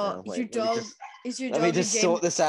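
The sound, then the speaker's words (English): An upset dog barks and yips insistently, a rapid run of loud, whiny barks with a brief pause midway before the agitated barking resumes. “My dog's very upset.”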